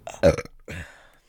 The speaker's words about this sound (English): She repressed the urge to launch her breakfast onto the floor. Reflexively, Auntie Mama just belched.